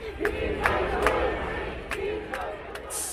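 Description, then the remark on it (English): A rally crowd boos Yang off the stage as he speaks, loudly and continuously: a dense wall of jeering voices broken by sharp shouts and a few claps, with no single voice standing out. “Some folks cheered him on, but the crowd quickly turned on him and booed him off the stage.”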